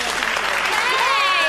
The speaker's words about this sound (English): I have still not figured out after all these episodes how to, like, say, like, I really enjoyed that, or nothing sadder than, like, one person clapping. It's just a terrible...